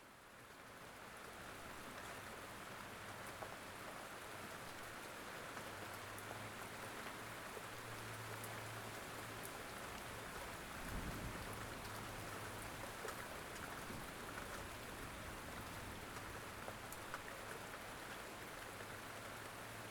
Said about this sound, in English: This beautiful rainstorm is filling you with infinite knowledge. Enjoy this storm now. Soak in boundless intelligence.